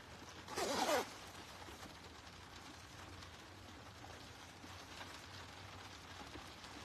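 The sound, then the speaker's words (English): A single quick zip rasps shut, a short bright burst lasting about half a second, followed by a steady soft hiss like light rain with no one speaking. “Let me zip this.”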